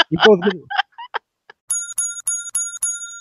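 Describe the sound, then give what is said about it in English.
A bright, metallic correct-answer bell dings five times in quick, even succession, loud, following a short burst of voices, marking a correct answer in a true-or-false quiz game. “We get the correct bell on that.”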